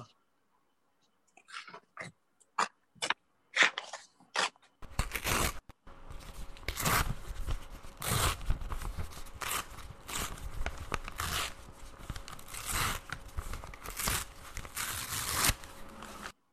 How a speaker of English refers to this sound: You know, I've described all this tearing, and since we're on the radio, I thought in lieu of being able to show you what I do, I will tear a sheet of paper okay. so you can hear how I do it.